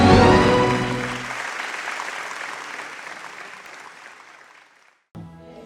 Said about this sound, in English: God bless you. A wonderful choir. Let's give them a round of applause. We appreciate you.